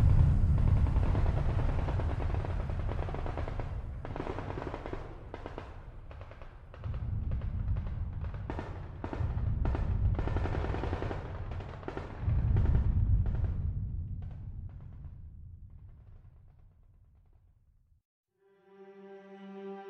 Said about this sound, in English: taking us far from the distant booms and gunfire that now echoed in the forest.